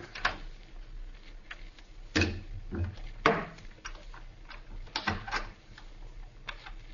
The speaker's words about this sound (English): Quiet. Somebody's unlocking the door through which we came. Maybe they won't come in here.